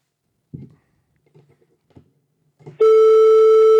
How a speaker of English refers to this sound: Oh, we got that. We got that beep. It's not a ring, so I'm assuming it's going through.